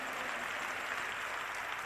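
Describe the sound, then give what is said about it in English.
An audience claps their hands in praise to God, a dense, continuous wash of many overlapping claps at steady loudness, with no distinct rhythm and no voices standing out. “Come on and clap your hands and give praise to God.”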